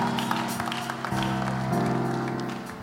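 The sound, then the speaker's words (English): An audience claps to welcome the chairman of the CMDA Nigeria Municipal Chapter, a steady, dense, continuous patter, mixed with sustained musical chords that shift pitch partway through, all at a fairly even, loud level. “Let's clap. Let's welcome him.”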